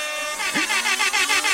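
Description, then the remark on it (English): A DJ-style air horn sound effect from DJing Mix, a DJ app on an iPad, blares loudly, starting with one sustained honk and then stuttering into a rapid series of short, repeated blasts. No one speaks. “I've been wanting an air horn app.”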